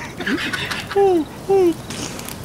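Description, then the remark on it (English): An owl hoots twice, two loud, clear, slightly falling notes about half a second apart, standing out over quiet background noise. “What the fuck's that? It's just an owl.”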